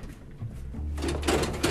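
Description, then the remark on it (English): A mechanical rattle as a door handle is jiggled against a locked door, a low rumble giving way to a burst of clattering, shaking noise. “This door is locked too.”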